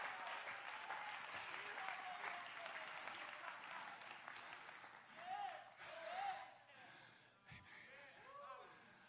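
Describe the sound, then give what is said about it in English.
An audience claps their hands to the Lord in a dense, sustained wash of applause that gradually thins out, with scattered voices calling out over the clapping toward the end. “Come on, clap your hands to the Lord right now.”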